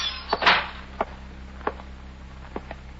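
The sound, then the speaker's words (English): A young man opens the sun-warped screen door of a dilapidated waterfront hotel and enters the lobby: a brief rattling clatter, followed by a few scattered light knocks and taps over a low steady hum, moderately quiet. “He opens a sun-warped screen door and enters the lobby.”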